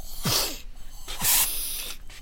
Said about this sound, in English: Oh, hang on a second. I need my spray.